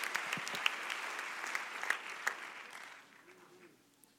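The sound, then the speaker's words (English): A seated audience claps their hands unto the Lord during a church service in a dense burst of applause, many overlapping claps with a few sharp ones standing out, fading away over the last second. “One more time, why don't you clap your hands unto the Lord as you're seated.”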